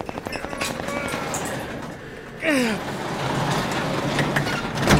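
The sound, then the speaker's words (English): A garage door is lifted open by hand, with a lot of snow around it: a steady rattling rumble, then a short metallic screech that slides down in pitch halfway through, followed by continued rolling clatter that swells toward the end. “We have to lift this garage door together.”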